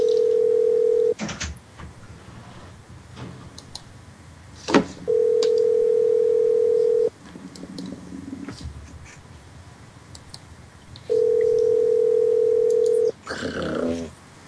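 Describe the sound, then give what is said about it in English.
Ringback tone of a phone call that nobody picks up, before it reaches a full voicemail box: steady mid-pitched buzzing rings about two seconds long, repeating three times with roughly four-second pauses filled by faint background noises. “That one didn't pick up.”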